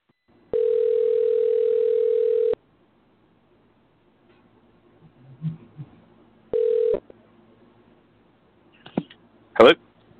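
A telephone ringback tone on an outgoing call to a guest of Wrestle City Radio: a steady two-second buzz, a long pause, then a short second burst, followed by faint handling noises and a sharp click as the line connects.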